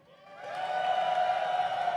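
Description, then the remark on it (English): An audience cheers for 100 Thieves to win, the noise swelling over the first half-second into a steady roar of voices with a sustained high whoop riding on top, continuing loudly to the end. “If you guys think 100 Thieves is going to win today, cheer now.”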